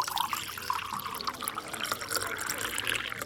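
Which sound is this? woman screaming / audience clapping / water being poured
water being poured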